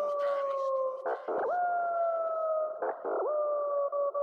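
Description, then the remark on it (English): Wolves howl in long, steady, sustained tones, loud, with two brief rough breaks where the pitch dips before the howling swells and carries on unbroken. “release the wolf pack.”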